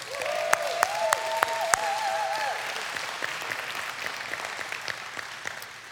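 An audience claps steadily for several seconds, a dense patter of many hands with a few sharper claps standing out. A high whistle or cheer rises over it early on before fading.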